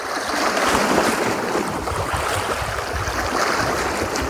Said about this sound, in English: Through the waves, the water, and the rocks, the shore becomes something more in that moment of intermingling.